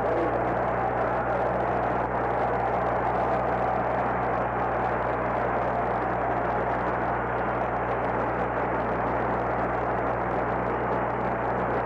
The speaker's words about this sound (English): Listen to the applause for Dave McNally.